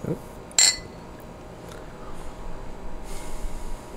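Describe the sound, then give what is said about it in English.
Beer glasses holding Steel Reserve beer clink together once in a quick, bright toast, ringing briefly. Afterward there is only quiet room noise and faint shuffling. “Let's cheers.”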